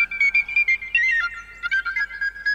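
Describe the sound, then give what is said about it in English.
A brief, bright penny whistle tune plays alone, a quick run of clear, high tonal notes with short gaps between them, lasting only a couple of seconds. “could you please play a penny whistle to celebrate that question?”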